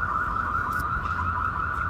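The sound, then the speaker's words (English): An alarm blares continuously directly behind the listeners, downtown, a loud, steady high-pitched tone that wavers slightly, over a low rumble of background noise. No one speaks. “An alarm was going off directly behind us.”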